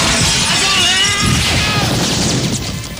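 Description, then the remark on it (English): A loud crash of a large plate glass window shattering, followed by a sustained spray of tinkling shards and debris that slowly tapers off over a few seconds. “In the middle of all of that, you run, you grab him, and dive through a plate glass window with him.”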